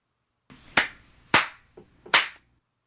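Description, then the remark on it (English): Three sharp hand claps made to sync a recording, at an uneven pace, each a bright, crisp smack with a short ring-out, plus a faint tap between the second and third. No voices. “How about we just hit stop and then hit go again? Yeah. Clap.”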